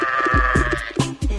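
Sheep bleating in a quick series of short, wavering cries, fairly loud, with a steady thin tone humming underneath and no talking.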